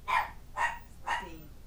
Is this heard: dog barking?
yes